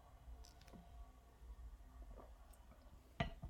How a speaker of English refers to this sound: We're taking sips of beers. It's not that we're pausing and thinking. We're drinking this bizarre beer It's a bizarre one. it's Yeah. delicious but bizarre.